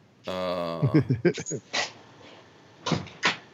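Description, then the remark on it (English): A dog gives a drawn-out whine followed by a few sharp barks, with a couple more barks after a pause. The sounds are moderately loud. “That dog.”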